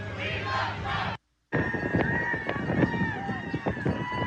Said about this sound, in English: Is that an air horn? I've never heard an air horn for Biden, just saying.